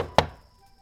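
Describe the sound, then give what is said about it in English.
A woman knocks once on a door, a single sharp, fairly loud knock with a short resonant ring fading out into quiet. “She knocks on the door.”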